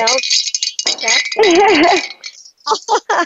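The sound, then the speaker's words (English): Bright holiday bells jingle a few days before Christmas and Hanukkah, in shaken bursts, a bright metallic shimmer with brief gaps, while a voice briefly warbles a wavering note partway through. “I always have to have my holiday bells.”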